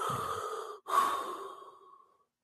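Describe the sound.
A single heavy, menacing breath, the Riddler's breathing in a movie's post-credits scene, drawn in and then slowly exhaled, raspy, trailing off into silence with no talking.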